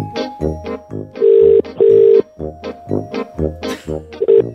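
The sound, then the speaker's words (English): An outgoing call's ringback tone sounds twice in steady, evenly spaced bursts, then starts a third, heard over a phone line with voices talking around it. “the listener you'll be talking to, who has no idea we're calling, is Kate”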